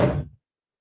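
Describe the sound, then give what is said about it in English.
A single dull, heavy thud of a head striking a tabletop, low and muffled, fading quickly into silence with no voices. “Okay, what just happened there is every time he hits a they or them, he's going to bang his head against the table.”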